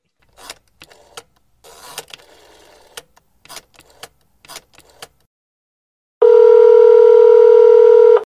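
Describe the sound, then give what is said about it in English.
A series of sharp clicks and taps like keypad presses, irregularly spaced, then a loud, steady telephone dial tone holds for about two seconds. No voices. “Should we call Celeste or what?”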